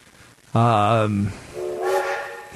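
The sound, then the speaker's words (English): A big train running down the track: its horn blasts loudly for under a second, then a softer, higher-pitched whistle tone follows and holds to the end. “We got a big old train running down the track.”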